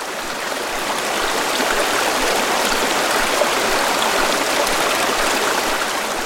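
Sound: river stream flowing water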